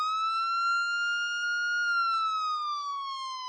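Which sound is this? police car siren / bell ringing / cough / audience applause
police car siren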